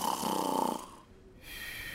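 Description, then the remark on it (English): A single loud snore rumbles for under a second with a raspy, buzzing texture, then fades into quiet breathing-like hiss. No talking is heard. “… demonstrated his superpower by putting his head on his pillow and starting to snore rather loudly.”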